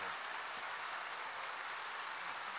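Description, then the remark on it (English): An audience applauds Dennis te Kloese after he joins the show to talk about Mexico's national football team, a dense, steady wash of many hands clapping that holds at an even, fairly loud level for the whole stretch, with no voices rising above it. “Please, a round of applause for Dennis.”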